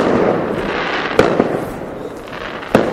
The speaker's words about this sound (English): Okay, I've just been interrupted by some amazing fireworks displays. Actually, it's not the first time for this podcast that fireworks appear.